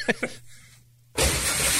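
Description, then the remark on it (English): A confused deer crashes through a nursing home window: after two brief knocks and a quiet stretch with a low hum, a loud, harsh burst of window glass smashing erupts suddenly, the bright crashing noise sustaining to the end. “This is a confused deer crashing through a nursing home window, okay?”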